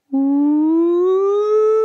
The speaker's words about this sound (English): I didn't hear the siren. The siren's in the background. Don't worry about it. I didn't hear the siren.